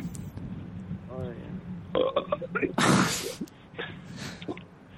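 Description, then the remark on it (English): Someone gulps down a drink in a short series of wet, throaty swallows and clicks, with a brief burp-like gurgle in the middle, over a low background hum. “He's like gulping something.”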